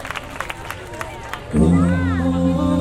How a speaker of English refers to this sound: Now keep that round of applause, ladies and gentlemen, for our super mega ultra bass.